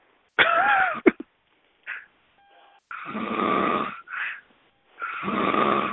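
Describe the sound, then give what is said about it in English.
A man snores loudly, with several harsh, rattling breaths coming in uneven bursts, some long and drawn out, others short and snorting, separated by brief quiet gaps. “That motherfucker breathing hard as hell over there snoring.”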